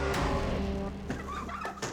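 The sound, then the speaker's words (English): A large raven on a windowsill on a wintry day calls with rough, throaty croaks, a long harsh call followed by a few shorter ones, loud with no voices. “To my surprise, I found a tremendous, stately raven upon my windowsill.”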